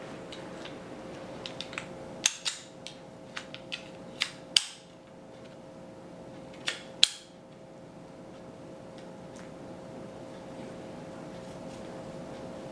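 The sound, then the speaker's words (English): A series of sharp clicks and snaps as the sections of a new, small folding cane with an elastic band lock together. Irregular taps build to several louder clacks over a steady low hum, with no talking. “So I'm gonna see what this looks like. I'm gonna snap it together.”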